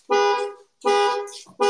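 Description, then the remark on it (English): The alarm of an old Explorer, set off when someone sat on the car keys, blares in loud, buzzy honking bursts, about three in quick succession with short gaps between them, and no voices. “I sat on my keys and the old Explorer just started beeping like crazy.”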